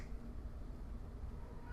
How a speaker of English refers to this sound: And I apologize if my cat meows. She is either in heat or wants something. I have no idea.